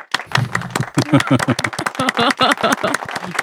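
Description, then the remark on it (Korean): An applause sound effect played from a file to mark the announcement of an advertising deal: many hands clapping in a dense, uneven patter for a few seconds, fairly loud, with some voices mixed in underneath. “나야 파일로 그냥 박수 소리 중지시켜.”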